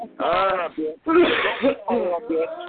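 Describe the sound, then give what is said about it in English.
A voice makes several loud, raspy throat-clearing noises, four or five gravelly bursts in quick succession with a strained, almost bleating tone. “Let me clear my throat too, you nasty bitch.”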